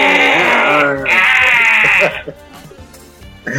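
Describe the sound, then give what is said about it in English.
A goat bleats loudly in two long, wavering cries with a throaty, gargling quaver, followed by a quieter pause and the start of another bleat. “Sound like a goat with a damn gargling, like a gargling goat.”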